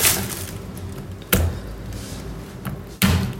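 A knife blade thumps down on garlic cloves three times with sharp, heavy knocks spaced about a second and a half apart, each leaving a brief rattle over a quiet background.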